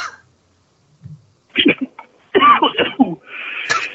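A short fit of harsh, raspy coughing: a pair of hacks, then a rapid cluster of rough coughs, trailing into a wheezy, breathy rasp.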